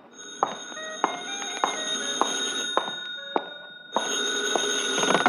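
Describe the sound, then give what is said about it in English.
A telephone rings in a booth with a shrill, steady electronic trill, its regular pulses loud, briefly dropping off before resuming in another burst. “Hey, maybe that's your call now.”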